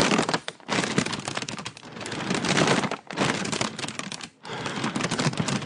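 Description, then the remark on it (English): Loud crinkling of a plastic cereal bag, a dense crackly rustle that runs almost continuously with a few brief pauses, and no voices. “Guys, I'm asphyxiating myself with the cereal bag!”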